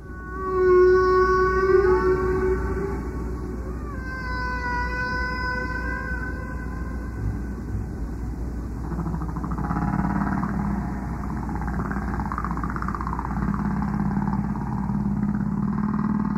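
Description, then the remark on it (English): Recorded whale song plays from an old tape, Prof Roger Payne's whale tape: long, sliding, harmonic moans and rising whistles over a steady hiss. Later come lower wavering groans, with no voices present. “That was Moth Prof Roger Payne's beloved whale tape.”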